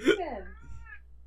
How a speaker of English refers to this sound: Hang on one second, I think my cat is obnoxiously meowing. He won't shut up. I've been hearing Toby and I'm just like, shit.